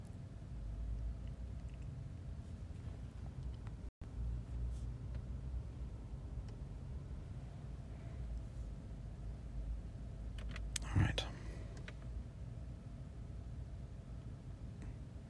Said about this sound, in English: Hear some background noise. It's just a car kind of creaking in the sun, so just a plastic.